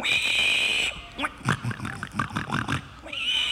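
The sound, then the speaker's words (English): A child's voice does a pig call, the first-place entry in the kids' division of a pig-calling contest: a quick rhythmic run of about seven squealing, grunting syllables, loud, with a steady high-pitched whine before and after. “First place. Pig, pig, pig, pig.”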